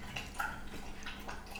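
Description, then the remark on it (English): A pet slurping water: quick, wet lapping clicks and small drip-like plinks in an irregular rhythm, fairly quiet, with no one talking. “Ooh, yeah, slurp.”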